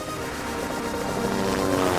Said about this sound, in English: Can you play some futuristic music? Like that, plus some helicopter music, or not music, but some choppas?